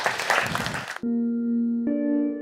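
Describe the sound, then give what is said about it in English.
About a second of dense, crackling applause from an audience at The Interval, the Long Now Foundation's venue in San Francisco, welcoming a speaker, cuts off abruptly, giving way to steady, sustained musical tones that shift to a brighter chord. “Join me in giving him a big round of applause.”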